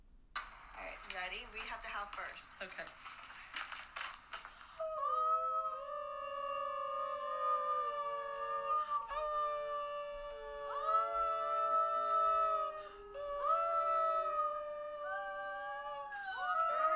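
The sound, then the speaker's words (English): After a few seconds of muffled, indistinct chatter, several people break into long, overlapping imitation wolf howls to get wolves howling, sustained and gliding in pitch, rising and falling in repeated waves until the end. “you're going to hear … telling us that we have to howl first”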